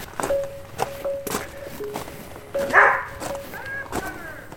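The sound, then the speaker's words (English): A female husky dog lets out a couple of sharp barks at a visitor arriving at a house, amid footsteps and shuffling, with a faint steady hum running underneath throughout. “She's barking at me, sorry.”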